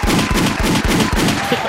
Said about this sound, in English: Applause and gunshots. We're shooting at the crowd.